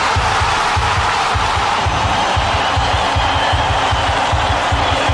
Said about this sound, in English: An eruption of cheering, yelling and flag waves. It's just one of those things when the goal hits the back of the net, it's an amazing situation.